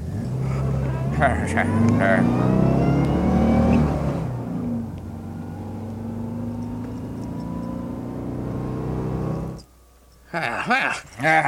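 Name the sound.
truck engine driving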